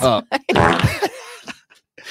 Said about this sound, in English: I don't have any sad sounds here. It's fine. Just do the fart noise.